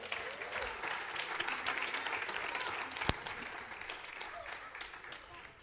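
An audience applauds steadily, a dense wash of many hands clapping at an even level throughout, with one sharp louder clap standing out midway and the applause easing slightly toward the end.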